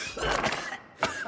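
Two short, dry coughs, a longer harsh one followed by a brief sharp one after a small pause, with no speech around them, demonstrating the dry cough that is a symptom of coronavirus.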